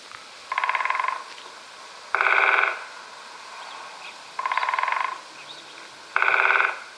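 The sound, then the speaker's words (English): A woodpecker drums on a tree in four short, rapid bursts, evenly spaced about two seconds apart, each a quick rattling roll heard clearly against a quiet background with no talking. “A woodpecker hammers at the tree to communicate with potential mates and rivals.”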